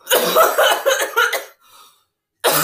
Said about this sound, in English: Okay, what do you rate this one? How many coughs?